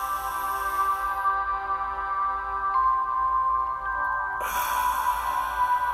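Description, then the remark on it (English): A long, airy inhale through the nose at the start of a breathing exercise, a soft breathy hiss that fades out and then returns, layered over a steady, sustained musical drone. “Just like any other episode, we're going to begin this one with breathing. In your nose.”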